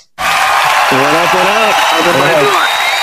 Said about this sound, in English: Ladies and gentlemen, let's give a big round of applause for the best Clint, Mr. Clint Mathis.